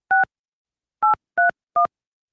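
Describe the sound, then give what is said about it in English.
Four clear touch-tone keypad beeps as a contact's phone number is dialed on a phone, evenly loud and unevenly spaced, with the first standing apart from the quicker last three. No voices or background noise. “It's ringing.”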